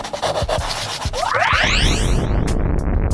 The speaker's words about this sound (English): Anything she draws, she can make it come to life. Birds. Planes. Crowds. Rocket ships.